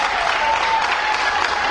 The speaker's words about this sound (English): Come on, you can clap.